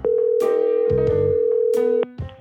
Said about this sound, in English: So I phone up the person in charge to ask.